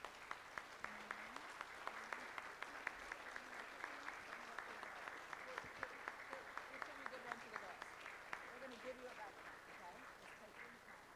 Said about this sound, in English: So I would like for you to stand up, and I would like for you to give a huge round of applause to these amazing kids.